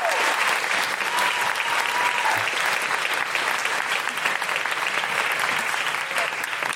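A crowd applauds steadily for an audience member invited up onto the stage, a dense wash of clapping hands that holds at a constant loud level for the whole stretch without fading or breaking.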